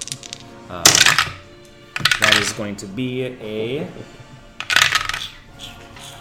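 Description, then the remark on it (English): Small dice rolled to hit in an attack clatter and tumble across a hard tabletop in a few sharp, bright bursts, with a man speaking briefly between the rolls. “It's going to be a mistake, I'm sure, but I'm hearing him rolling dice.”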